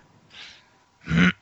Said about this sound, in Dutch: Hoest, zegt hij.